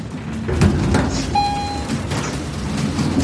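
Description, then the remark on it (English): A door slides open with a rumbling, scraping rush and a brief high metallic squeal partway through. It is fairly loud, with a steady noisy background and no voices. “They could shoot us as soon as the door opens.”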